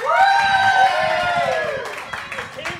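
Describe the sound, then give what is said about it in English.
A live crowd cheers loudly for about three seconds for an entry called Winery to Winery, with a long, high whoop sliding downward over a steady roar of voices and scattered claps. “I'm afraid to ask this, but can I have a cheer for Winery to Winery?”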